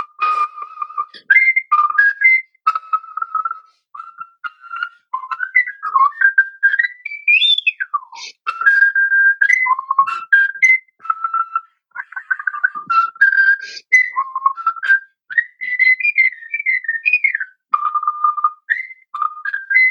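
A person whistles a jazz tune alone, a bright, agile melody with quick slides, bends and trills, phrases rising and dipping with short breaths between them.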